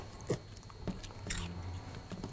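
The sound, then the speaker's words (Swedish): A dog crunches on a cheese puff, with a few sharp, brittle crunches and bites spread across a couple of seconds over a low background hum. “det kan också vara Valles hund som tigger såna här nya ostbågar”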